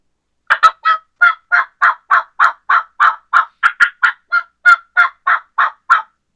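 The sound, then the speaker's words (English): An imitated wild turkey call made by a person huffing air, saying the word "chuck" and dropping the jaw: a steady run of about eighteen short, raspy chucks in an even turkey rhythm, loud, with no talking. “And you're saying the words chop, chop, chop, chop, and you put it in the turkey rhythm.”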